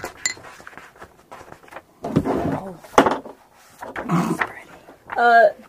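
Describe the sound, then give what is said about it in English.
A dog pants in rough, noisy bursts, sounding agitated, then lets out a short high whine near the end, with some shuffling and background voices around it. “My dog is having a heart attack, I swear. He's like going for him.”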